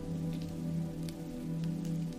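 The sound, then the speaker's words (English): Steady, heavy storm rain pours down in a continuous wash, with a low rumbling undertone and scattered brighter patters of drops striking a surface. “A silver light flashes through the windows as the storm intensifies.”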